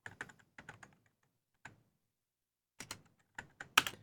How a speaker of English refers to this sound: You can hear the thumping of the keys.